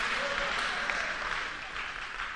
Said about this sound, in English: Clap, better clap so that you will have faith with me.